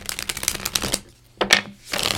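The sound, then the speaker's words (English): A deck of tarot cards being shuffled for a tarot reading: a dense run of quick papery flicks and riffles, a brief pause, then two shorter bursts of shuffling. “And just shuffle while focusing on your energy.”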